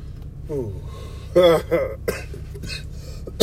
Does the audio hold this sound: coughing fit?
yes